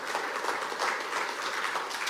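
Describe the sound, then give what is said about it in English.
A church audience clapping during the 9:30 service, a steady dense wash of many hands applauding at once with no breaks, fairly loud and even throughout, with no voices standing out. “I don't know who's better at clapping, the Tremont campus or this campus.”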